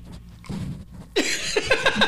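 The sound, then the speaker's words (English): Dolly, a dog, breathes and sniffs with her nose right up against the microphone: a soft, breathy huff, then a louder run of quick, rhythmic snuffling puffs, with no one talking. “Can you hear her breathing right now?”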